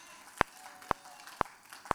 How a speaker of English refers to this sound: Can we give God one more hand clap of praise this morning? Hallelujah.